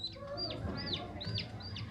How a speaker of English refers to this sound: Even the chick and duck noises coming from Chandler and Joey's foosball table.